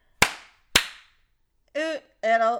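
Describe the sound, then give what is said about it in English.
Two sharp, loud hand claps about half a second apart, done first in a clapping game played backwards, followed by two short sung or hummed vocal notes with no clear words. “I just do it the same way, only the claps first.”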